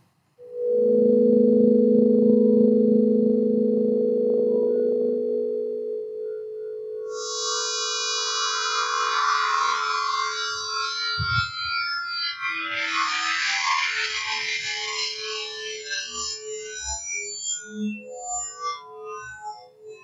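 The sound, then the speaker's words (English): Electronic tones from the Labrador, a device invented by Dr. Vaz that converts odors of chemicals found in human decomposition into sounds, in the key of C: steady low sustained drones give way to a dense, shifting cluster of higher warbling, beeping synthetic tones, with occasional low thumps and no speech. “Vaz invented a device called the Labrador that can turn odors derived from chemicals found in human decomposition and convert those into sounds.”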